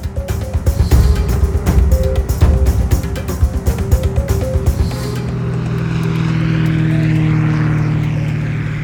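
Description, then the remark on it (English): A privately owned propeller airplane's engine runs loud as it readies to go, chugging with rapid rhythmic pulses at first, then settling into a steady, droning hum with a faint rising whine. “I can't believe you own a plane”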